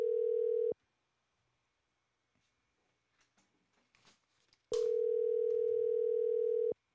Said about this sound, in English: Oh, we're ringing.